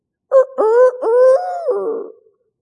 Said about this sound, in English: That's the chicken crowing.